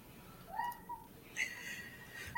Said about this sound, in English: Is that somebody's bird? No, it's my cat chirping. My cat likes to chirp.